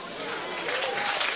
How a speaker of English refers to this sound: Quit clapping. You're taking my time.